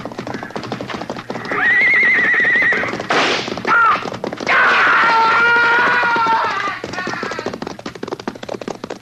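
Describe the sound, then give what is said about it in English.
A horse being ridden out of a corral whinnies loudly twice, long shrill cries, while rapid hoofbeats clatter steadily underneath, suggesting a galloping horse. “Look, he's trying to ride the horse out.”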